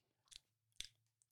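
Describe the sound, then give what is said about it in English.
Crisp crunching and tearing as someone chews on a paper towel, two sharp bites followed by softer rustling chews, heard alone without talking. “Paper towel. Yeah. A paper towel.”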